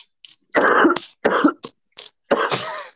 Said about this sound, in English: It's like ambient coughing.